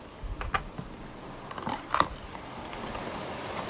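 Soft rustling and a few light clicks as cards are handled and taken out for a card reading, with sharper handling sounds near the middle over a quiet background.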